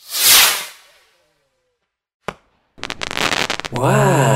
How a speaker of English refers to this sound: Grab a firework. That's a firecracker. Yeah, light it.